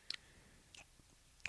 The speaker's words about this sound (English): What the fuck are you doing? Are you chewing gum? Is that your cow? Is that how your white trash chews gum?